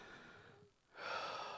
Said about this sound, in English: Just take a moment with me and take an inhale with me, all right? And then exhale. Everybody together, 1, 2, 3.